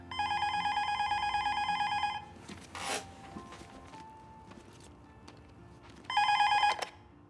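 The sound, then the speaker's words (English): A telephone rings loudly at home in a long electronic burst, falls quiet with a brief rustle in between, then starts ringing again a few seconds later. “I got a phone call from Steph's daughter”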